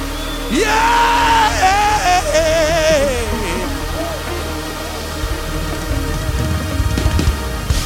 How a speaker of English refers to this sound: Come on, give him a shout of praise in this house. Come on, before you walk out of this building.